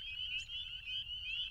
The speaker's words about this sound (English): These are spring peepers.